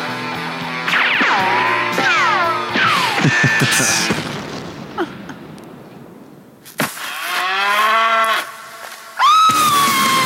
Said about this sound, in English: And Vince screams, and the movie ends with some great music.